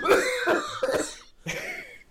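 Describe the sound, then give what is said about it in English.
A person coughs in a few harsh bursts, clustered close together, then one more cough after a short pause, with no talking. “I don't mean to laugh at death, it's just I started coughing.”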